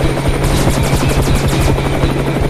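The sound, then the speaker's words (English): A helicopter roars loudly, its rotor blades thumping in a rapid, steady rhythm over a constant engine whine, with no one speaking. “I don't know if I can get us away from that helicopter.”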